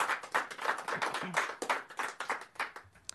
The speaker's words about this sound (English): Candidates, let's give the candidates a big round of applause.